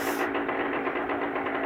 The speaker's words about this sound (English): John's ready with his chainsaw.